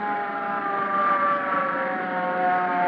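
A hook and ladder fire truck's siren wails steadily for three seconds, a continuous layered tone holding one pitch with a faint engine rumble beneath, growing slightly louder toward the end. No one speaks.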